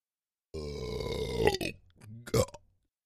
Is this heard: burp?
yes